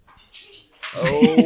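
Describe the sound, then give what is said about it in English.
A female husky being shooed out of a room lets out a short, rising whine-like yowl that grows louder toward the end, after a few softer, breathy sounds at the start. “She did the spin move to try to get back in the room.”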